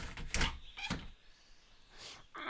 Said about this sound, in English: Let's see what happens if we open the door.